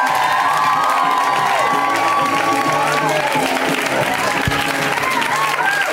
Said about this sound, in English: Whenever it's somebody's first time, you know, we go super wild. We welcome them with so much extra clapping.